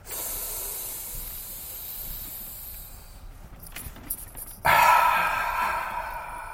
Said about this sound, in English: Three deep breaths. Ready? In through the nose, out through the mouth. Go.